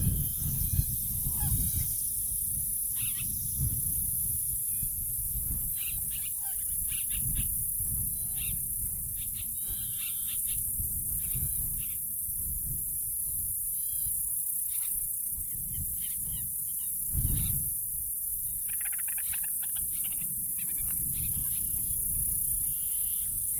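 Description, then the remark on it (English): Outdoor ambience at the Cattail Marsh Wetlands on a windy day, with steady wind rumble, while geese honk and other birds call intermittently. No one speaks. “Actually, it's the Cattail Marsh Wetlands.”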